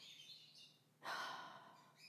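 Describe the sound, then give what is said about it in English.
Pet birds chatter with soft, high-pitched chirps and tweets at a low level, broken midway by a brief breathy rush of noise; no one speaks. “Birds, I told you to shut up.”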